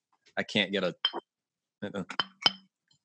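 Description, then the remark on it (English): A few sharp, ringing glassy clinks, fairly loud, scattered among murmured voices, like glasses being tapped together in a toast. “As close to a clink as I can get.”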